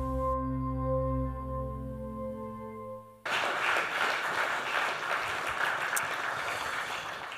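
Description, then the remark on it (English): A sustained musical chord holds for about three seconds, then cuts off as a crowd breaks into steady, dense applause that continues loudly to the end. “definitely deserving of a clap.”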